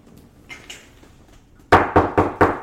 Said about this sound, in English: Come in. It's weird that someone knocks at a bar. Super weird.